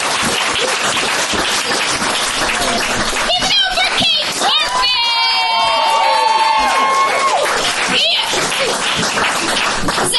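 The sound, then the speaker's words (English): An audience at a comedy show claps and cheers loudly for the host for the full stretch, with a dense wash of applause, excited shouts and a few high whistles rising above the crowd noise midway through. “You guys give it up for your amazing host”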